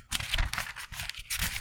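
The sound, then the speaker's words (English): Thin, translucent onion skin paper pages of a hardcover notebook from the Onion Skin Journal being handled, giving a crisp, crackly rustle in several quick bursts with a low rumble underneath, moderately loud, with no talking. “This is real onion skin.”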